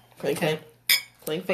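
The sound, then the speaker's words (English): Glasses clinking together in a toast for Kobe, including clinking with the DJ: a few bright, ringing clinks in quick succession, with one especially sharp, crisp strike in the middle, fairly loud with no voices. “We can clink for Kobe.”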